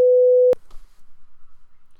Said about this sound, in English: But we don't discuss where he works, so I'll beep that out.